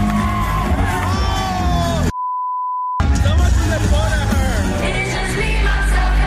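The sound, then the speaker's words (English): A large, loud crowd at a pop singer's concert in New York City cheers and whoops with high shouted voices, cut off by about a second of a steady pure beep tone before the roaring cheers resume. “Grammy-nominated singer was performing in New York City last night, and the massive crowd was having a great time”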